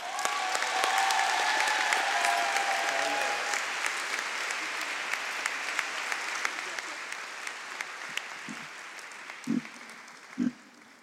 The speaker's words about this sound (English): So without further ado, everyone, if we can give a round of applause to our speaker,